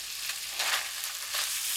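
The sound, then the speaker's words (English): Steady crackling sizzle of ham frying in butter, a continuous hiss with brief louder bursts of spattering, with no one speaking. “I'm frying it in butter.”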